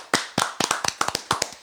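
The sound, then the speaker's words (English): A short burst of applause for all of season 3's breweries and beers: sharp, crisp hand claps in a quick, slightly uneven rhythm, about a dozen in under two seconds, with no voices. “So let's give a big round of applause for all of season 3's breweries and beers.”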